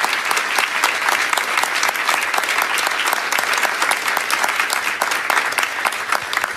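Sustained audience applause, a dense, steady patter of many hands clapping at a constant loud level throughout, with no voices standing out.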